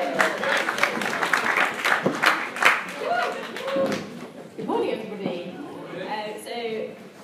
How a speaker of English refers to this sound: Come on, give her a round of applause, come on.